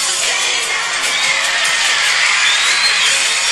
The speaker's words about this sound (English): The crowd screaming.